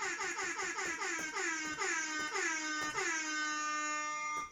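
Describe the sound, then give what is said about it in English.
A rapid series of loud, brassy air horn blasts in quick rhythm, each one bending in pitch, building into a long sustained honk before a final short burst, with no talking. “He's going to be the first introduction here because this man is here, and he's already got the air horns blaring.”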